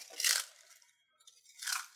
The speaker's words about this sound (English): And then avo on top. And then I'm going to crunch these chips, like, onto it a little bit.